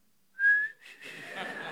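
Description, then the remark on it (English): A brief, thin whistled note lasting about half a second, then fading into breathy, airy hissing, a feeble, failed try at a loud whistle, alone. “Contrastingly, my whistle is embarrassing. It is pants.”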